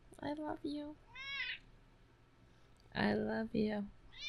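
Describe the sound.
A male domestic cat meows several times in short clustered calls with a pause between groups, and purrs a lot, while a person briefly speaks softly.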